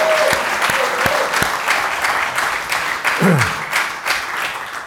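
A church audience breaks into sustained, dense applause for the Lord, many hands clapping at once, steadily, with a few brief vocal sounds rising through the clapping.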